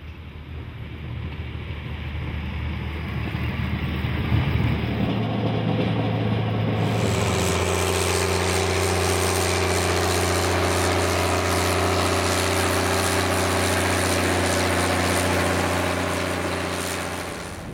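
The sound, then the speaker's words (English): A car engine drones steadily from start to finish on a winter mountain road en route to Badger Pass Ski Area in Yosemite National Park, its low hum shifting up in pitch partway through, with no voices over it. “So we're en route to Badger Pass Ski Area, which is a downhill ski area within Yosemite National Park.”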